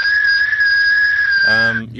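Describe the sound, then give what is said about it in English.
A single steady, high whistled tone at about 1900 hertz, held loud and unwavering for well over a second, briefly overlapped by a voice just before it stops. “So if anyone wants to call in and whistle...”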